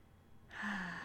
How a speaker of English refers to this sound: I am breathing. I connect to my breath, the beautiful source of life that is all around me. My breath reminds me to relax and let go.